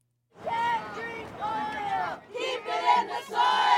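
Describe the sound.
A large crowd shouts and chants together in loud, rhythmic bursts, many voices rising and falling in unison like a rally chant, close and energetic throughout.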